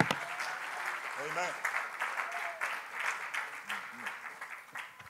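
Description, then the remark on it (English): A church audience applauds steadily during a service, a dense wash of many hands clapping throughout, with scattered voices calling out over it. “Clap your hands one more time before you're seated.”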